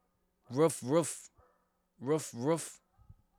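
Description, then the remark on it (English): A human voice mimics dog barking with two pairs of loud "woof woof" barks, separated by a short pause, with no other sounds around them. “Got dogs in the house, you know what I'm saying?”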